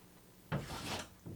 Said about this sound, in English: He's like clawing at the door. He walked out and I took the opportunity and shut the door and now he is pounding on the door. Hear it.